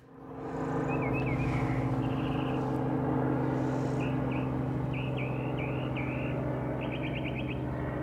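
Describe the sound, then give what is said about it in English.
A northern mockingbird calls in short, varied chirping phrases, repeated every second or so, over a steady low drone of traffic or engine noise. No one speaks. “Meanwhile, got mockingbird calling out, and I think that possibly is a song sparrow.”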